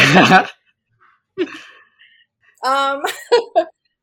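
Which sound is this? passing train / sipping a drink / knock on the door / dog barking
dog barking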